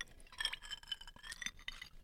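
Glasses clink together in a toast several times in quick succession, bright ringing taps scattered over a couple of seconds, fairly quiet with no voices.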